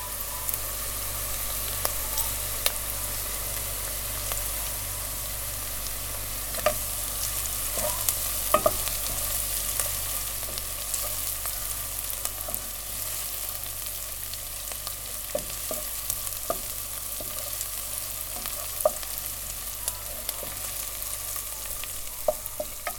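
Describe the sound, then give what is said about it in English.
A steady, thin sizzle of a soffritto of herbs, onion and garlic frying in olive oil to start a recipe, with occasional sharp clinks and scrapes of a spoon stirring the pan, continuous with no talking. “it's what we call soffritto, like a mix of different herbs and onions and garlic that we like to put in olive oil to start whatever the recipe, needs some spices.”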